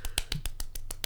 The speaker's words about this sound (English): He's slow clapping and jerking off. Yeah, no, it sounded terrible.